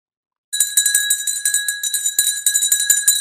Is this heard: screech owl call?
no